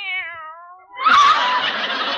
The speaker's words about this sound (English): Oh, there you are, you cute little kitten.